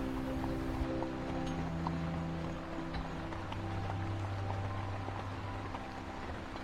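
Horses' hooves clip-clop in a steady rhythm while a wooden carriage pulled by two horses rolls along, with a continuous low rumble of wheels underneath and no voices.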